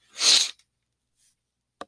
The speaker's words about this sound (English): I just give you a big sniffle right into the fucking microphone.